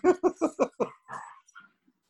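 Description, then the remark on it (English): Two pet dogs growl at each other: a quick, even run of five rough, throaty bursts, then a longer ragged snarl that trails off into quiet. “Sorry, my dogs are growling at each other.”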